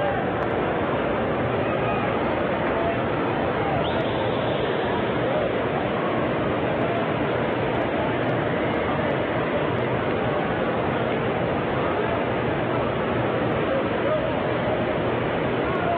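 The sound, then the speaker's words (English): A steady wash of stadium crowd noise from visiting LSU fans at a baseball game against the Sooners, a dense murmur of many voices and cheering that holds at an even, moderately loud level throughout, with no clear individual words. “The LSU fans continue to make a little bit of noise.”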